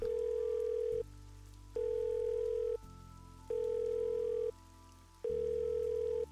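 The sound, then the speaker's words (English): A telephone line rings out as a man calls another man once more, with steady electronic tone bursts, four pulses evenly spaced by short pauses, clear as if heard through a handset, with no voices; the call goes unanswered to voicemail. “Mike slammed down the receiver and tried to call Tommy once more.”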